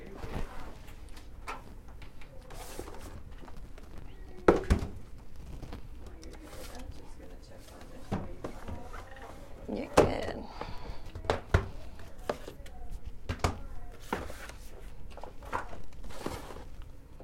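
A chair being moved, with a series of irregular scrapes, shuffles and a few sharper knocks and thumps over a steady low background rumble.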